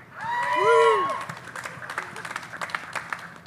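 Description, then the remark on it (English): Audience applause with loud cheers and whoops rising at the start, then settling into steady, scattered clapping that continues to the end. “How come you got the biggest applause?”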